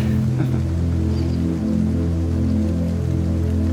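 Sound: rain falling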